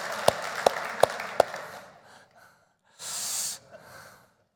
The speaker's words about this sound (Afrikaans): Jy het sulke mooi skoene. Kan ons net hande klap vir sy skoene?